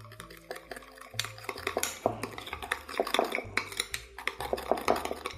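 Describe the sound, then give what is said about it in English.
A utensil scrapes and clinks against a bowl in quick, repeated strokes, stirring together sesame oil, sugar and kosher salt, a steady rhythm with soft tapping under a low background hum and no voices. “Stir those things together.”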